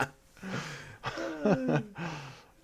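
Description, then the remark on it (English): A drawn-out human yawn, fairly loud, rising into a strained, voiced stretch with wavering pitch before trailing off into a breathy exhale. “Uh-oh. Oh, I'm yawning.”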